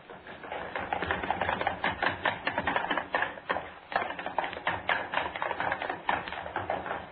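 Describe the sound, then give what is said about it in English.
Three people's running footsteps clatter rapidly and continuously across a studio floor and up stair steps, a dense, fairly loud patter of overlapping thumps with no talking. “I want running footsteps, all three of you. Across the studio floor, up the stair steps.”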